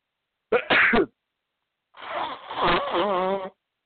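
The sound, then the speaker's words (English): A sharp, loud sneeze from a summer cold bursts out, followed after a short pause by a longer, breathy exhale that trails into a strained voiced groan. No words are spoken. “Smoke Sneeze Radio. Just a little quick little summer cold.”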